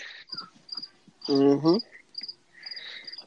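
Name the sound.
crickets chirping sound effect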